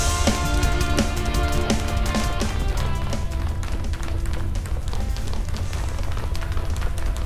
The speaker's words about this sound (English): Why are there so many footsteps?